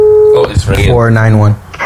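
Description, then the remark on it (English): A telephone ringing tone sounds briefly as a steady electronic tone through the line at the start, then cuts off as a person begins talking. “Oh, it's ringing.”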